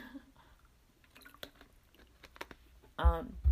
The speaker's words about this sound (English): So one second, because I have to take a drink of water.